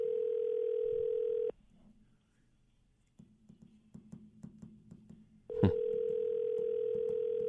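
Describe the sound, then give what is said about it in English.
An outgoing telephone call rings unanswered: a steady electronic ring tone sounds, breaks off while faint hold music or a recorded tune plays quietly, then a click and the steady tone returns, loud over the line. “Ringing.”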